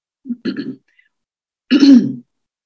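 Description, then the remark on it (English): A person clears their throat twice, a short rough burst followed by a louder, longer rasping clear after a brief pause, with no other sound around it. “I may have to clear my throat a few times during their day together today.”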